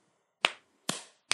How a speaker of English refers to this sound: We started off on kind of a morbid note here, but the truth is, that was some really phenomenal television. Yeah, we'll do a slow clap.